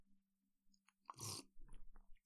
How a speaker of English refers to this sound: Let me take a sip of this tea right quick. Hold on.